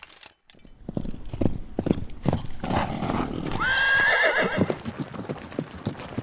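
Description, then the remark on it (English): Ahab's jet black horse, hitched to his chariot and galloping as fast as possible, whinnies loudly in a rising, wavering cry over a steady rhythmic clatter of hooves, with no voices. “Ahab hitched his horse to the chariot and took off.”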